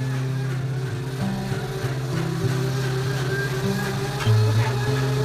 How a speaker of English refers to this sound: Okay. Should we wait for the blender? Okay.